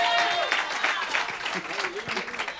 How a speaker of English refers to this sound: Let's give God a hand clap of praise. Let's give God a shout of praise. Hallelujah.